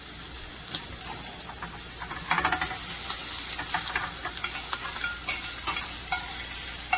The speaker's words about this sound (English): Now I'm gonna drop my gnocchi in the pot of water back here. Like I said, it's gonna take like 2-3 minutes.